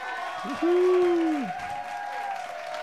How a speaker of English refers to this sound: This nigga really found some applause.